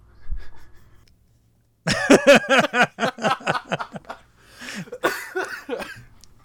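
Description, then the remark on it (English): A fit of coughing: a rapid string of about a dozen harsh, voiced bursts, loud and uneven, followed by a short pause and a raspy, wheezing breath. “I could tell you're having trouble breathing over there.”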